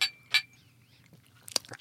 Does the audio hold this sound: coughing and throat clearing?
no